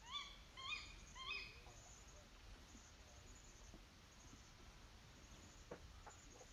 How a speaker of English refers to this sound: Okay, he says it's a strange night bird that he has no idea what it's called.